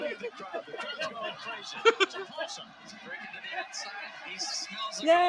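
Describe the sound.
A stadium crowd cheering at a USC vs Oregon State game in Corvallis, a dense continuous roar of many overlapping voices with scattered higher shouts rising out of the din, steady and fairly loud throughout.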